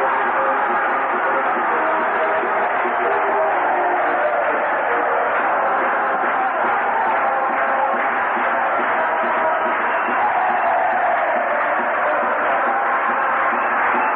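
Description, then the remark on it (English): A huge baseball stadium crowd of fans bursts out singing along to a song played at the ballpark, thousands of voices blending into a dense, steady roar that holds at an even, loud level throughout, with a slightly muffled tone. “And because we were vying for first place with Kansas City, they just, rather than clapping along is what they normally did when I would play that song, everybody just burst out in song. Listen to the crowd.”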